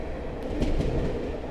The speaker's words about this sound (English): We're just passing through Cheltenham Spa station and I can hear the sound of the diesel accelerating.